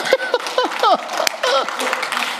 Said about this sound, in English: Now, go ahead and clap now.